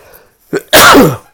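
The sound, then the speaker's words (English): A single loud sneeze: a short sharp intake followed by a forceful, noisy burst that trails off quickly, with no talking around it. “Sneezing.”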